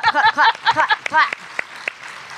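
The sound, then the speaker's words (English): A handful of scattered, sharp claps ring out amid loud whooping and cheering voices, then trail off into a few isolated claps. “Let's get a clap going for that statement.”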